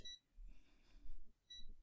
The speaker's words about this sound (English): You're going to hear all that beeping because we don't do editing anymore. That's the microwave getting our sea rations ready.